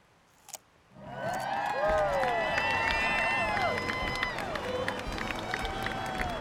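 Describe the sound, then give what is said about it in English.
A crowd bursts into loud cheering after a brief quiet moment, with many voices whooping and shouting together over a dense, steady roar that carries on for several seconds, as Senric Capybara's prediction signals an early spring. “You know, I wonder if they'd be cheering this much if Senric Capybara predicted winter.”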